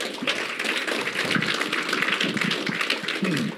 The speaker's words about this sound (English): Can we just give a quick round of applause?